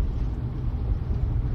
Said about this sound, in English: We are so stuck in traffic right now. It's 8 o'clock at night, people. Go home. Nope, everyone has to go out. No, you don't really. And if you notice, it's the traffic going from Orange County into L.A. that's bad.